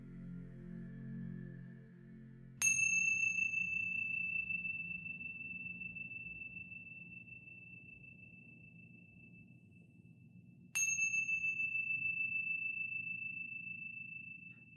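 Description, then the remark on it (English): Two clear meditation chime strikes, about eight seconds apart, each a bright metallic ring that hangs in the air and slowly fades over a soft low hum. “And when you hear the sounds of the chimes, gently coming back into this space.”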